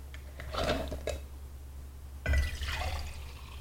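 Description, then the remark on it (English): A big glass mason jar used for drinking water is handled, with a few light clinks and knocks, then a sudden louder burst of sloshing, splashing water that tapers off. No one speaks. “We like mason jars to do things like your water.”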